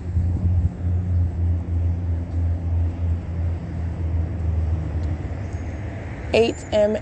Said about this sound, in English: And that is the bus again, loitering in relevant position. It's it's 8:11 a.m. That's Route 87.